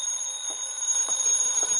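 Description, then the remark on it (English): A telephone rings with a steady, shrill, high-pitched tone that holds for the whole moment, with faint flutters underneath and no voices. “Then the phone rang.”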